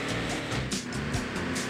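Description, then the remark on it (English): A car engine drones steadily at a low, sluggish pitch, with a constant rumbling hum and road noise like a slow vehicle cruising in a video game, no voices present. “Damn, this is tough with a slow car.”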